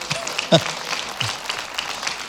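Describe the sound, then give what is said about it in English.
A church audience cheers and applauds for Stevens Point: a dense patter of clapping with a few scattered whoops and raised voices, holding at a moderate, steady level for a couple of seconds. “We're glad Stevens Point is alive and running today, right? Give them a cheer.”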